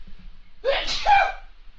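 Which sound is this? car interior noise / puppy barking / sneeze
sneeze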